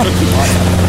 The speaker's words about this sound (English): We've just walked out into the hangar. You can hear a Robinson helicopter, I think it is, taking off in the background.